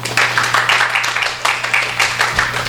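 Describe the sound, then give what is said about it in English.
An audience at a Skylight Books event claps steadily for a few seconds to welcome a speaker, a dense wash of many hands with a faint low hum running underneath. “You didn't promise applause.”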